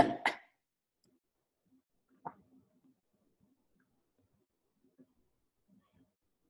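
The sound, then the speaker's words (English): Two quick, sharp coughs burst out, followed a couple of seconds later by a single softer cough or throat-clear, then near silence with only faint traces. “Oh, a little coughing episode there.”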